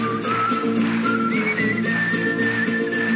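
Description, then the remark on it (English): A clear, bright human whistle carries a melody, stepping between sustained notes over steady instrumental backing. The whistling sits prominently in front of the music, with no talking. “There's a whistling bit, you can join in if you like.”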